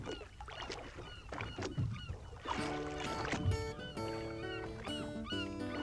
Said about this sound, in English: The only sound he hears is the slow and steady creaking of the oarlocks and the splish splash of the water that his oars turn over. The sun starts to rise on the water and his work day begins.